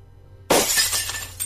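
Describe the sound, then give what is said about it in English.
Glass shatters in a sudden loud crash, followed by a second of bright tinkling shards scattering and settling, with a final small clatter at the end. Only a low hum precedes it. “Next thing I remember, I was standing on Brandon's porch with glass stuck in my right hand.”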